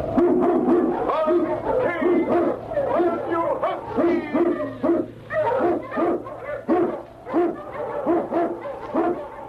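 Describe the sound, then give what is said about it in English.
A pack of sled dogs, led by the Eskimo lead dog King, barks loudly in rapid, overlapping bursts while blazing a trail through storm and snow in the Yukon, keeping up an excited, steady rhythm with a few higher, yelping tones mixed in. “King, the swiftest, strongest of Eskimo lead dogs, blazes the trail through storm and snow for Sergeant Preston as he meets the challenge of the Yukon.”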